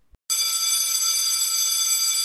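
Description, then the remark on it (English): A school bell rings loudly and steadily for about two seconds, a harsh, bright, continuous electric ring that starts abruptly just after a brief click and then cuts off. “And the school bell rang.”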